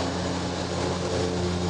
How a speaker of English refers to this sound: We're just going to wait for the planes. Planes are doing weird things. This is what today. It's like down at the hangar.